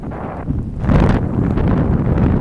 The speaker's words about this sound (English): Forgive the sound of the wind that's pretty loud. Prayer by the Peace Bridge again.